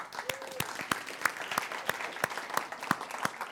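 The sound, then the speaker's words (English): An audience claps together in a steady, evenly spaced rhythm, about three claps per second, moderately loud over a faint background murmur of the room. “Easter is a reminder to us that we can't put limits on God, that what seems dead can be brought back to life again, and I think we need to clap.”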